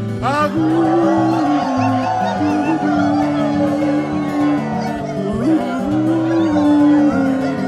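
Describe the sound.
A group of people howls together in imitation of coyotes: many overlapping voices, loud and sustained, sliding and wavering in pitch, with rising whoops at the start and again partway through.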